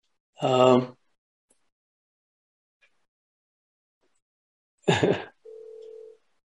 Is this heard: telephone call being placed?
yes